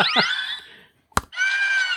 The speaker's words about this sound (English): I'm thinking that's eagle scream. Yeah, that's eagle scream. But it also, there's one that goes up. So there's actually 6 or 7 different ones when you hit it. I'm just going to play with my prop.